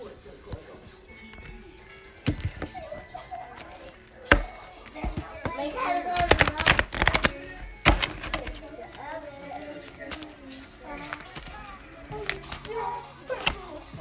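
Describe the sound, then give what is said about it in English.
A deck of tarot cards being shuffled, building to a dense, crackling riffle in the middle with scattered taps and handling noises around it, faint voices murmuring underneath. “Let me do one good shuffle.”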